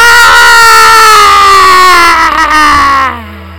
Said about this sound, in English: I want you to breathe in through your mouth. And as you breathe out, I want you to scream. Scream as loud as you can.